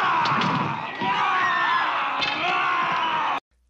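A panicked crowd yells and screams all at once as the creature attacks it, a loud, dense tangle of overlapping shouts with a couple of sharp thuds mixed in, then cuts off abruptly.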